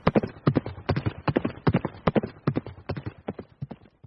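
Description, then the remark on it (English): Steady clip-clop of a ridden horse's hooves on back roads in Indiana, a brisk repeating rhythm of sharp knocks, moderately loud and continuing throughout with no voices. “We flash back to Hendricks, riding on his horse through Indiana's back roads to get to his hometown.”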